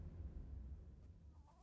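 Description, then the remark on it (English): Chickens cluck softly in a garage as they are being fed, over a low, steady rumble, with a brief rising call near the end. The sound is quiet, with no one speaking. “Maya's feeding the chickens in the garage in their brand new home.”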